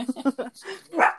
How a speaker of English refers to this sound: My dog's probably going to bark right now. He's looking at the guy. No. Here he goes. I know. There he goes.